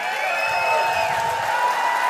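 A large crowd of people cheering, yelling and shouting together in praise and thanksgiving for the King of Kings and Lord of Lords, a loud, sustained wall of overlapping voices with a few higher sustained shouts standing out, steady throughout.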